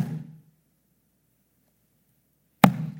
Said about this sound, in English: As those hammers hit those nails, Jesus is praying, "Father, forgive them, for they don't know what they're doing."